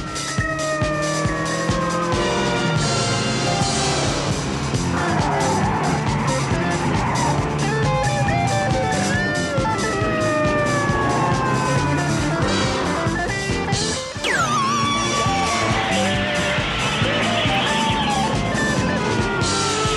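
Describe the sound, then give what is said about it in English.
A loud, relentless TV car chase involving highway patrol officers: roaring engines, screeching tyres and wailing sirens that rise and fall, layered over a dense, frantic score with no letup for the full twenty seconds. “Cue car chase. I love how insane the soundtrack goes at this point.”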